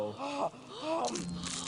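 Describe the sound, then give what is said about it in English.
A crunchy snack being bitten and chewed, with a few short crackly bursts, mixed with voiced murmuring sounds. “The crunchy parts are my favorite.”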